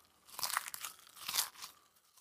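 Close, crisp crunching and crinkling in two main bursts, like a cardboard snack box being torn open and a mouthful of crunchy food being chewed. No voices.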